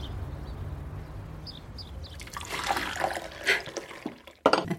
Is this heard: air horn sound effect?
no